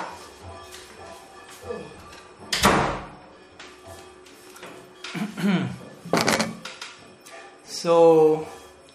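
A door is handled and shut: a few solid knocks and thuds, then a short squeaky creak at the end, with quiet background sounds and faint movement in between.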